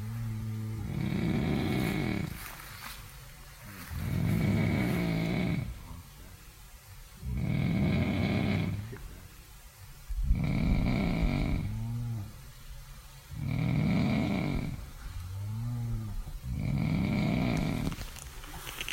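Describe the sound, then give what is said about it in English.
Heavy, rumbling snoring from a person in a nearby tent on a camping trip: about six long, rasping snores at a slow, steady rhythm, each a deep, loud, gravelly roar with a throaty tonal edge, separated by short quieter breaths. “It wouldn't be my choice of how to live, but in the tent nearby there was somebody snoring like an elephant for the whole night.”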